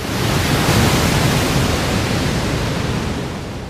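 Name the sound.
roaring waterfall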